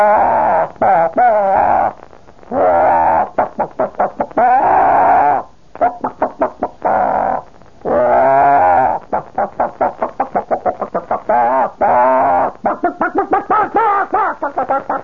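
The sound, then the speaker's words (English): A voice imitates a hen's pre-laying cackle, with loud, rapid runs of short clucks broken by longer drawn-out squawks, rising and falling in pitch for about fifteen seconds. “All right, now, when a chicken is about to lay an egg, they go...”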